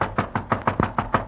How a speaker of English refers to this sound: Until one day I am in my hotel room when I hear a knock on the door.